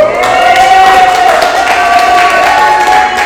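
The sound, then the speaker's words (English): A crowd at a Verse and Rhythm event applauds and cheers loudly and steadily, dense clapping with shouts and a sustained whistle rising above it, no one speaking. “Just a quick note, we've been doing verse and rhythm for quite some time now, so first and foremost, I have to give a big thank you and a very big round of applause”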